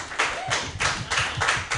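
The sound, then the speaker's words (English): An audience claps steadily, a dense crackle of many hands sounding in rolling pulses that swell and ease roughly every quarter second, moderately loud with no voices over it. “Give it up for a honk. That was awesome.”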